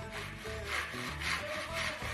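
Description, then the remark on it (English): A hand saw rasps back and forth through wood in steady strokes, about four pushes in two seconds, fairly loud with no voices. “They borrowed saws, they borrowed drills, they did everything they could.”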